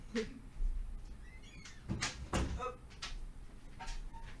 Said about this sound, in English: Wait. I'll close the door.